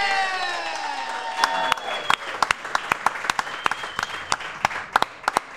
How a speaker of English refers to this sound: Hey, can we get a big round of applause for Thu Brewing for hosting us tonight?